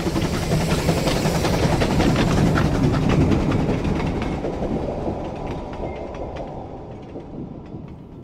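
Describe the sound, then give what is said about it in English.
A troop train roars past a signalman at Kirkpatrick on the tracks, a dense rumble with rapid rattling clacks of wheels over rail joints, loud at first and gradually fading as it moves away. “He watches the troop train hurtle past.”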